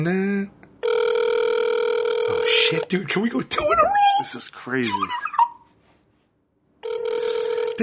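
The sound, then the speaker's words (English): A steady, buzzing ringback tone sounds through a phone line on a call to a randomly dialed Long Island number, a long ring followed by a pause filled with excited male talk, then another ring beginning near the end. “Well, that's not good. It's ringing.”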